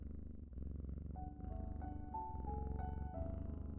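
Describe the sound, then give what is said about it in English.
A cat purrs in a steady, rumbling drone, with soft rhythmic pulses and a faint tonal hum drifting over it, continuous and fairly quiet throughout. “Let the purring wash over you, soothing any anxiety or stress.”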